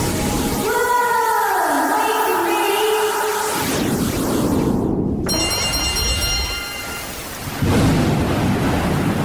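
thunderstorm with heavy rain

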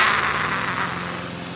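lawn mower engine running

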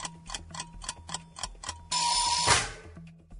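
quiz countdown timer ticking

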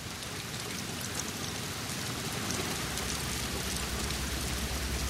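thunderstorm rain

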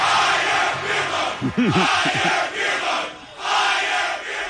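stadium crowd cheering

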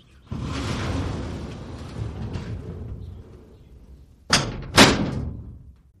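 door being closed

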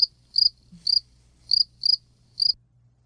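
crickets chirping sound effect

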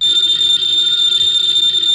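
telephone bell ringing

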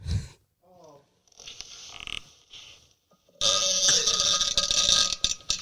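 squeaky fart

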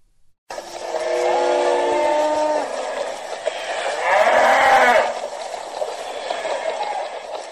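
herd of cattle mooing

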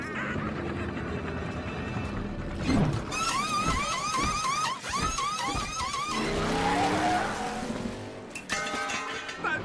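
race car pit stop

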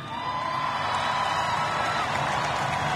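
crowd applause

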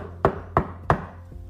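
knocking on a door

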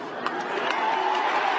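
stadium crowd cheering

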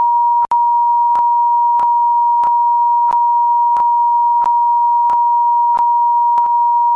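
censor bleep tone

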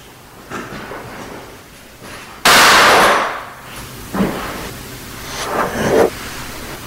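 gunshot

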